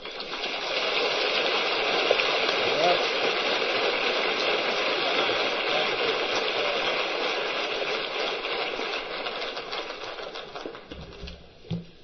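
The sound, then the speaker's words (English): A large convention audience claps steadily for a speaker, a dense crackling wall of applause that holds for about eleven seconds before thinning out and fading at the end. “Yeah, with all that applause, I can hardly wait to hear what I've got to say.”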